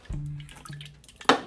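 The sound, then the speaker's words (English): Someone takes a few gulps of a drink, with low swallowing sounds, then a sharp breathy exhale or clunk right after. “I don't take ADD meds anymore, but I just needed a drink.”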